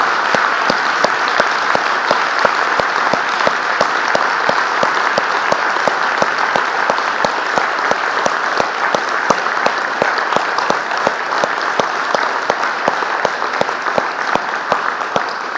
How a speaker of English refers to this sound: And I just want to honor them. Would you clap for them? I want them to stand today and let's show them appreciation for what they do.